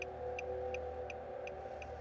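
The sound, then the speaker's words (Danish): A Ford car idles with a steady low engine hum while its hazard lights tick in a regular rhythm, about six crisp clicks spaced evenly, clear with no talking, as it pulls onto a green verge on a Sunday morning with little traffic; its right rear tyre is flat. “Stefan tjekkede bagspejlet, inden han slog nødblinket til og forsøgte at navigere Forden op i den grønne rabat.”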